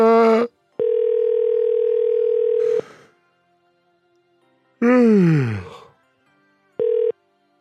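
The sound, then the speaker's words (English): A steady electronic telephone tone drones for about two seconds, cuts off, then briefly returns near the end; in between, a voice lets out a loud, falling groan-like sigh. “It was like a phone call that I couldn't hang up on. It kept coming back.”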